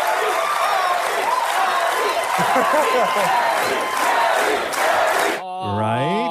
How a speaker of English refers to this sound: But a lot of people are saying it's also so they could prevent any Harry haters from being in the audience, where they wanted to sort of stack it, because if you listen when Harry comes out, it's all chants, right?